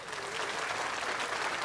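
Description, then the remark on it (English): A steady burst of crowd applause, one of a soundboard's built-in default clips, dense overlapping clapping at an even level with no pauses, sounding like a canned sound effect played back at moderate volume. “They also included some sound clips defaulted into it.”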